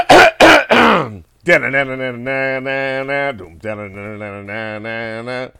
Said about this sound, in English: I'm going to clear my throat. Can you edit it? Yeah. Let him clear his throat.